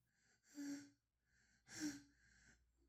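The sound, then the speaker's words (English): Two loud breaths blown straight into a microphone by a man, each a harsh, airy rush lasting under half a second, separated by a brief quiet pause. No one speaks. “And by the way, you'll notice he's breathing into the mic at first.”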